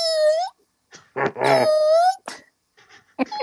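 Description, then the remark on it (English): A voice imitates a gurgling stomach with high, rising whines and whimpers like a puppy that wants to go outside, several drawn-out wails broken by short gaps, fairly loud, with no other talk. “And all of a sudden, my stomach starts going.”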